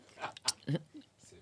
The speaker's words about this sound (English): Sipping.